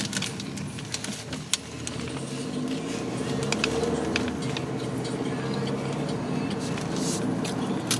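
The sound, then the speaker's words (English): Road traffic noise heard at night while driving to a casting: a steady, moderately loud low rumble of vehicles that holds for the whole stretch, with scattered small clicks and ticks on top and no clear talking. “We're gonna battle traffic and get you to your last casting.”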